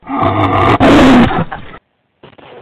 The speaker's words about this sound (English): There it is. There's that lioness roar. Let's hear it again.